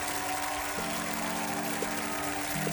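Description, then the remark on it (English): A canned clap track applause effect played on the Budhub Radio show Electronic Jam Night: steady, dense crackling of many hands clapping, with a low droning hum underneath, holding an even loudness throughout with no voices. “Alright, I'm gonna throw the clap track out.”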